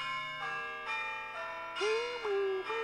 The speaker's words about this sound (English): Okay, the next one's Bell Tower. I know exactly what this sounds like. It goes, bow, bow, bow, bow. Yes, yeah, you're right.